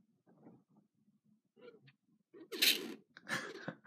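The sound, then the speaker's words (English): Soft murmuring breaths lead into a sudden, loud sneeze, a sharp breathy burst, followed quickly by a second noisy exhalation. “When people sneeze, it's not, I know it's not supposed to be funny, but sometimes it makes me laugh.”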